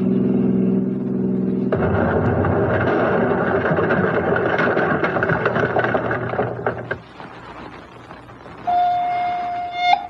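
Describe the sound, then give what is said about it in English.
A humming engine gives way to a sudden loud dynamite explosion at a dry cleaning store at Franklin and Jefferson Avenues at 10 p.m., its roaring, crackling rumble lasting several seconds before breaking off. A steady siren wail starts soon after. “Emergency squad, explosion in dry cleaning store at Franklin and Jefferson Avenues at 10 p.m.”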